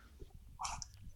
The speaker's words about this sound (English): By saying Becca enough times, you summoned the spirit of Rebecca the Cat.